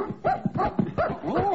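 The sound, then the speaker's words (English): A female Cocker Spaniel named Martha, running off with a phone, barks in a quick run of four or five sharp, fairly high yaps, some trailing into whiny, whimpering tones, steady and moderately loud with no talking. “Oh, it's a Cocker Spaniel.”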